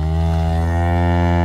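A cow moos in one long, loud, steady low bellow that holds its pitch for the whole moment, with no other sounds around it.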